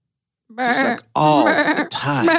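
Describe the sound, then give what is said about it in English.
A person's voice imitates a sheep, giving three wavering, nasal bleats in quick succession, loud, with a brief pause after the first. “One of the things that I noticed about sheep in my time out there is that they bleat all the time.”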